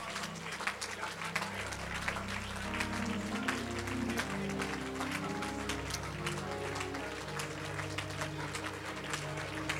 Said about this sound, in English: And oh Lord, as I lift my voice this afternoon and clap my hands, come on, let those altars fall.